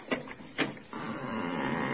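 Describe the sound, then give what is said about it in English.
The door of a basement apartment, one flight down, is opened with two quick knocking clunks of the latch, followed by a long, steady, grinding creak of the hinges, which need oil, lasting to the end, fairly loud with no voices. “Wait, I'll open the door.”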